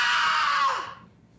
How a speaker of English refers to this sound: Did you make a sound effect? Did I make a sound effect? You did. It was a scream. You didn't hear it? No. Well, why don't I play it again? It's so faint.